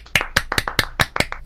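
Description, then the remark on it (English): A short burst of hand clapping, a round of applause for Bray Wyatt being the champion going into WrestleMania: about eight sharp claps in a quick, steady rhythm, with no voices alongside. “I think Bray, first of all, can we just, let's just round of applause for Bray Wyatt being the champion going into WrestleMania.”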